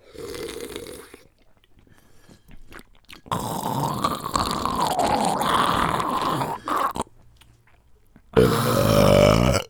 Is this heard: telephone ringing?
no